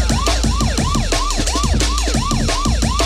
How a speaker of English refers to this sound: Shout out to the police siren crew as well. Don't worry, there isn't a police car, it's just a truck.